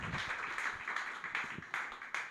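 An audience at a stand-up comedy show applauds a comedian being introduced, steady, dense clapping washing together into a continuous roar, a few sharper claps popping out, with no voices over it.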